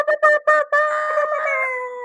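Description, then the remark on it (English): Three short, loud air horn blasts in quick succession, then one long sustained blare, all with a bright, brassy, steady pitch and no voices. “These air horns.”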